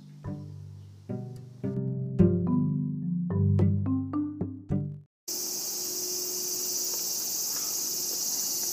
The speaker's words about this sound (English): Those were semi or cicada.